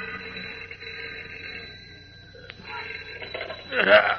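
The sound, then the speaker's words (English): An old-fashioned telephone rings at night beside a telegraph operator in the deserted Daily Planet city room, its bell buzzing in a steady continuous trill that briefly thins, then swells louder just before the end. “A few minutes later, a sleepy night telegraph operator in the deserted Daily Planet City room yawns and reaches for the ringing telephone at his side.”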